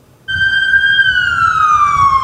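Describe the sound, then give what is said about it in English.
An emergency vehicle siren blares in, holding one loud, shrill wailing tone that slowly glides lower in pitch, over a low rumble of traffic. “Emergency vehicles, pedestrians crossing traffic, here we go, and street hockey, just a few of the hazards drivers must steer clear of.”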